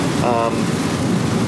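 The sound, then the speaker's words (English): Heavy rain pours down during a drive, a steady, dense, loud wash of noise with a low rumble underneath and a brief tonal whine rising out of it early on. “I knew it was supposed to rain. I was not expecting this.”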